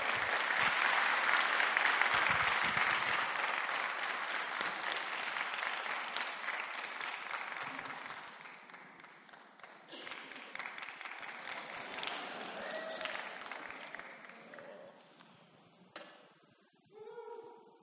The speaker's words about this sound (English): And as he comes up, let's welcome him with warm applause.